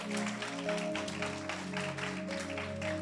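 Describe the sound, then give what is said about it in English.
A crowd claps after a prayer, a steady, dense, continuous wash of applause, with sustained keyboard chords ringing underneath throughout. No one speaks. “Come on, we can clap for that.”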